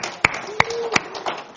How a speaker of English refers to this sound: Let's give the Lord a clap offering tonight.